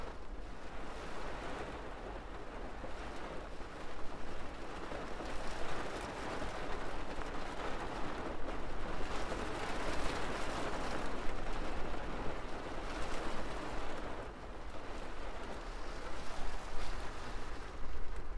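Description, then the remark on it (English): Waves on Ireland's wild west coast surge and wash in a steady, broad roar with swelling crests every few seconds, mixed with gusty wind noise; no voices are heard. “Ireland's Wild West Coast at its finest, just for you and your ears.”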